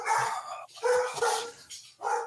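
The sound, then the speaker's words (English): A male dog, freaking out, barks several times in quick, uneven bursts. The sharp yappy barks are loud, with short pauses between them. “For those who are listening, the dogs are having a moment.”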